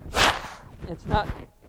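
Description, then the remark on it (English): Someone with a cold blows their nose: a sharp, breathy burst of air, then two shorter snorting blasts with a faint nasal honk, fairly loud and with no talking over it. “and it's not just sort of, like, I got to blow my nose, sorry.”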